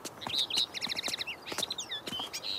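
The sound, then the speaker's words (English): A small bird chirps from its nest in a tree on a morning, in quick, high trills and twitters, steady, while soft tapping footsteps sound intermittently underneath. “Mom, can you hear the bird?”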